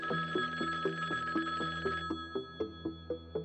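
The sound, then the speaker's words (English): An old-fashioned telephone bell rings in rapid, rattling bursts, a steady trill of repeated strikes that sounds fairly loud with no voices present. “But then, things got turned up a notch when the strange calls began.”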